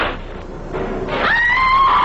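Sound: woman screaming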